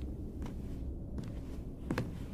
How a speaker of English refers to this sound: My confusion was interrupted by the sound of footsteps on the cement floor of the garage.